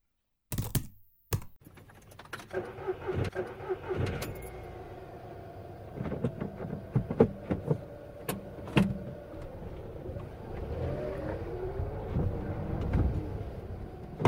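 Heavy clunks and clicks from the door of a car about 25 years old, followed by the creaking, grinding rattle of its window being wound, with a steady mechanical hum underneath and no voices.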